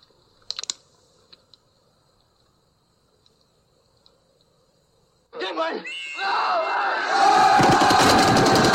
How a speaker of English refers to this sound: Well, that last part, I mean, you stop hearing the machine gun fire, and then you just hear Archie running. And then that dot, four bullets, dot, yeah, four bullets in the chest, and then it freezes.